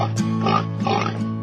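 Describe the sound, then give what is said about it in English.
Several short pig oinks come in quick bursts over a steady musical backing, fairly loud, about four grunty snorts spread across the moment. “I got pigs that I slop all day.”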